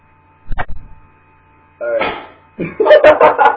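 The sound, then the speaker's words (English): A door swings shut with a quick double knock of wood and latch, followed after a pause by muffled, noisy rustling and faint voice-like sounds. “Second you close the door, I'm going to start.”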